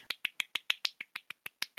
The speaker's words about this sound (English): Congratulations to TN Grid. Do they deserve a clap? I think they deserve a clap.